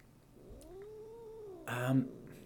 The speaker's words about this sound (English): As my cat screams into the microphone.